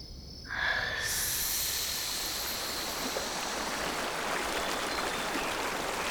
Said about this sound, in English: This is the James River, by way of hell. Would you care to get your feet wet?